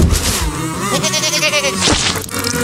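A goat bleats in a long, quavering, tremulous call lasting a couple of seconds, fairly loud, over a busy, noisy background.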